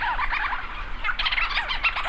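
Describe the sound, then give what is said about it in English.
A dense chorus of thousands of Leach's storm petrels circling overhead and swooping at night on Great Island off Newfoundland in the North Atlantic, recorded by Lang Elliott: many overlapping, rapid chattering and purring calls, mid-to-high pitched, running continuously and loudly with no voices. “Thousands of leeches storm petrels circle overhead, swooping and calling into the night.”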